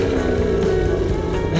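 A loud engine roars steadily with a deep, throaty drone, its pitch holding fairly even before lifting slightly near the end. No voices are heard.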